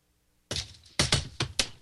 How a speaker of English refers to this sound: Whoa! I heard a rotary phone fall. An actual rotary, you have a rotary phone there, don't you? No, that was the bell that the slide whistle slid off the printer, which had the newspaper on top of it that I was trying to pull out from under.